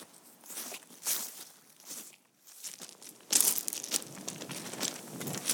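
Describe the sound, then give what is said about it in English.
Footsteps crunching over a loose, gravelly surface outdoors, an uneven run of scuffing steps that grows louder and busier halfway through, with no one speaking. “We'll go for a little bit of a wander.”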